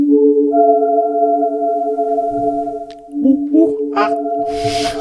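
An eerie, monkey-like sound effect for a horror scene: sustained wavering tonal cries with harmonic overtones, building to shrill, noisy shrieks and bursts near the end, loud.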